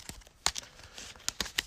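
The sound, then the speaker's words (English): Quick, crisp papery snaps and riffles, a handful of sharp clicks in an uneven burst, as a player shuffles a deck of playing cards for a card game, at a low level. “All right, so I'm giving my deck a quick shuffle here, and then a quick shuffle for my encounter.”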